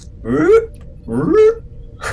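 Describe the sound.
A voice imitates a red alert klaxon with two rising, whooping wails in a row, each swelling loud and strained before cutting off, with a third starting at the end.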